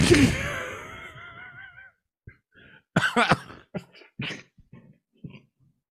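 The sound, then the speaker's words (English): A loud burst of coughing tangled with wheezy laughter from a man having a laughing, coughing fit, tapering off over a couple of seconds, followed by several short choppy coughs and breathy laughs. “He's having a laughing, coughing fit as we speak.”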